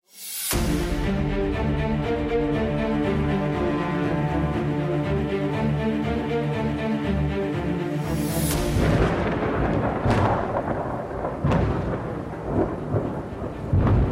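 A loud, sustained droning tone gives way to a rumbling thunder crash, punctuated by a few sharp cracks as the roll continues. No one speaks.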